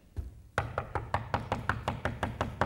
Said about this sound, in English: And now I'm at the outside of your house and I'm knocking. I'm trying to get your attention.